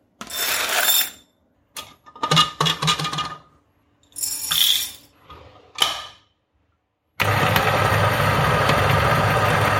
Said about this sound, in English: That goes on for the next 20 seconds or so, because the Niche 0 grinds at the rate of about 1 gram per second. I think you'll agree with me that it is not too loud at all